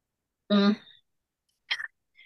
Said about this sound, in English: So let me say, sorry, I'm just getting over a bit of a cough.